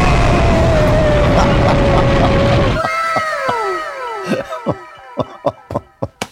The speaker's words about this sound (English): Mailbag. Where's my scream?